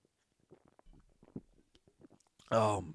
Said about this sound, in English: First, going to take a quick swig of Pepsi.